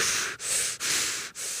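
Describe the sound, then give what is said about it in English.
A voice mimics hard, heavy breathing: rapid, rough breaths in and out, about four in quick succession with short gaps, airy and fairly loud, with no talking. “And I was all breathing all hard.”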